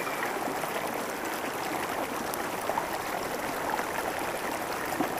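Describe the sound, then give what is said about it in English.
Steady, continuous rush of flowing water in the Cambian River, a broad even babble with small splashy ripples throughout and no voices. “Relieving stress in the Cambian River”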